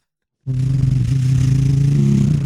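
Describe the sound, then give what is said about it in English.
A heavy diesel truck engine, presented as the diesel-powered BunkTech bunker alarm 3000, roars to life abruptly and holds a loud, steady low rumble with a slight revving throb, continuous with no talking. “And he's firing up the engines.”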